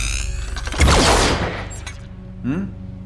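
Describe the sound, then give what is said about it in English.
A single loud cannon blast, fired as a test, erupts and roars briefly before fading, over a steady low hum, followed moments later by a softer, short whirring sweep. “Why are you aiming the cannon at me? As a test.”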